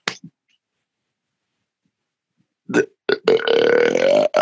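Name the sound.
burp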